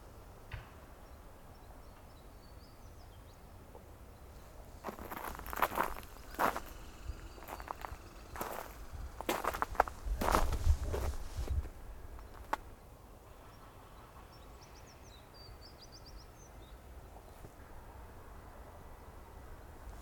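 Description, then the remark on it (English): Faint American tree sparrow song and calls: short high twittering phrases near the start and again near the end, with loud crunching footsteps or handling noises in the middle. “It's an American tree sparrow singing and calling.”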